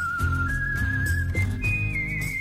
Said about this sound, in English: And for the news, we like to have some good news listening music. Whistle man, start your thing.